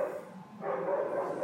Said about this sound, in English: Sorry, the dog's barking in the background.